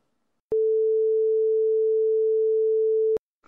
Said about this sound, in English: Hello? What's beeping? Hello?